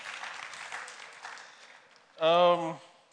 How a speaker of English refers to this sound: Thank you very much. Okay, let's clap for ourselves.